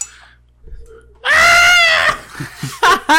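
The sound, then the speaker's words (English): A person lets out a loud, warbling roar-like scream, imitating Chewbacca's Wookiee roar, lasting about a second after a quiet start, then trailing into short bursts of vocal noise. “You just scream like Chewbacca.”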